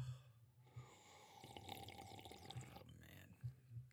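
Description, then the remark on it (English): Water is poured into a drinking glass, a rising liquid splash and trickle lasting a couple of seconds, with a few drips and soft breathing around it. “Take a drink of water. Oh, yeah, water. Get my glass here.”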